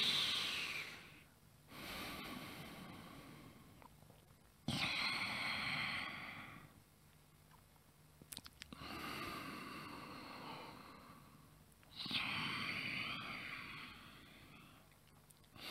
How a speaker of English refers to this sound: In for five, out for five. And feel tiredness being expunged. Let's keep breathing now. Keep breathing.